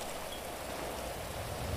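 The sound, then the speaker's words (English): Steady rain pours down in a video game in a dense, unbroken hiss, with no individual drops standing out and no voices, just a constant wash of falling water throughout. “Yay, it's going at a time when it's raining.”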